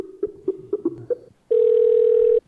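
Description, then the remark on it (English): A quick run of short electronic beeps from a phone being dialed, then a loud, steady telephone tone holding for about a second before cutting off. No voices. “let's try to call Nick then”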